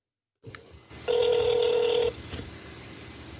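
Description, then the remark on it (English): A telephone call to FreshBooks customer support rings through a single time, a steady electronic ring tone lasting about a second, fairly loud, followed by quiet line hiss with no one speaking. “you got me on the first ring.”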